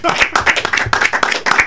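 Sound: hand clapping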